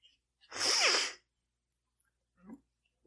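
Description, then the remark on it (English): A single loud sneeze bursts out with a sharp hissing rush, followed a second later by a brief, quieter sniff or murmur. “There's a sneeze stuck in my face.”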